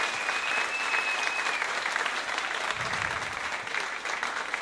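A crowd applauds steadily, many hands clapping in a dense, continuous wash of sound that stays loud for the whole stretch, with a faint high whistle-like tone early on.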